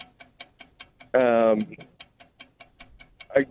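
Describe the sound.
A 15-second countdown timer for a beat-the-clock word game ticks in a quick, steady rhythm throughout, loud, while a voice briefly speaks over it once and starts again near the end.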